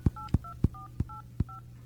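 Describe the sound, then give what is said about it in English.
Five quick touch-tone beeps as a Sprint PCS cell phone dials a North Pole number to call Santa, each short dual-pitched tone paired with a soft button-press thump, coming at a brisk, slightly uneven pace over a faint low hum. “These North Pole phone numbers.”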